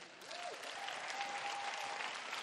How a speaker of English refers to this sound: if you're going to praise God, go on and clap. Come on.